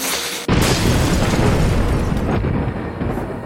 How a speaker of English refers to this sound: And that's when it happened. There, at that moment, there is the moment of lightning.